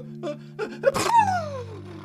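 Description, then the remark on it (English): A dog sneezes: a few sharp, building inhales lead into one loud, explosive sneeze, so violent it knocks over a drum set, trailing off into a falling, voiced whine, all over a steady low background drone. “He sneezed so violently that he knocked over his drum set.”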